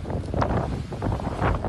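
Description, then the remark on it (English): Storm waves from Storm Ciarán crash over a seawall in Devon in a continuous, loud roar, with two heavier surges of spray breaking through amid buffeting wind noise. No voices are heard. “Waves crashing over the seawall in Devon.”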